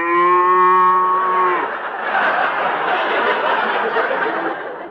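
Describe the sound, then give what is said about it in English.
A Holstein cow lets out one loud, drawn-out moo with a steady low pitch, then it breaks into a rough, breathy bellow that carries on for several seconds. “Those Holsteins can get pretty mean, you know.”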